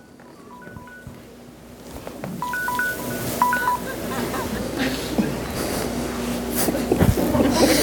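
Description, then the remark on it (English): Short electronic alert tones from a timer app on a phone beep in quick clusters, a brief burst early and a longer run a couple of seconds later, signalling that time is up, over a noisy, rumbling room background. “No, that was not a phone call. That was your time is up.”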